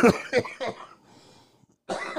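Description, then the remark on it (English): A fairly loud cough in a few quick rough bursts, followed by a short quiet pause and then another harsh burst, with no talking; a preemptive warning cough meant to head off a larger cough. “That was a preemptive cough.”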